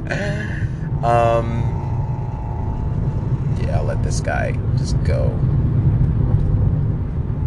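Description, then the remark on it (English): A car engine rumbles steadily and loudly throughout, a deep, rough drone that never lets up, while a man speaks briefly over it. “I thought my engine was annoying. I don't know if you can hear this. And it just sounds terrible.”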